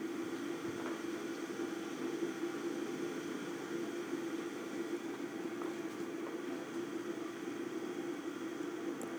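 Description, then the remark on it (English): An electric kettle heats water with a steady, low rushing hiss and hum that holds constant throughout, fairly quiet, with no voices. “You can hear my electric kettle.”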